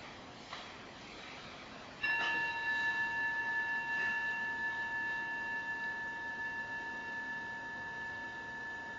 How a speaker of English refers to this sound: And the ceremony begins with the three bells, and then we'll bow and then honor our historic teacher.